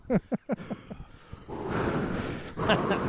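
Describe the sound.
A voice puts on exaggerated heavy breathing: a quick series of short, wheezy gasps, then a long, loud, raspy breath rushing out.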